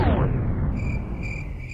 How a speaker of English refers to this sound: Standing in a field of crickets. And why are we in a field of crickets? What is the sound we're not hearing?